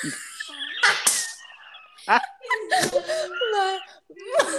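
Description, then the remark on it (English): A dog cries and whimpers in a series of high, wavering whines that slide up and down in pitch, broken by short breathy huffs, fairly loud throughout. “My dog is crying and my mom feels bad, so we're going downstairs.”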